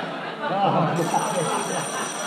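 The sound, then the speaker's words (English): A telephone bell rings, fairly muffled and steady, with a thin high metallic edge, over a noisy background with some voices mixed in. “Oh, and now I think I better answer the phone because it's liable to ring any minute.”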